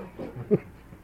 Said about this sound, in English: And when I hear the dogs barking without seeing them, I always get that sort of flashback.